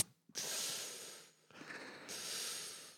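A person sharply sucks air in through the mouth: two long, breathy, hissing inhales back to back, the second slightly rougher, with no talking.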